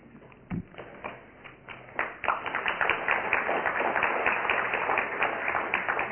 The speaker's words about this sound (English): No need to applaud people, I do this every week.